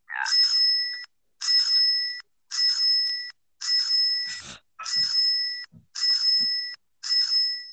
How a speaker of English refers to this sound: Well, the bells will toll.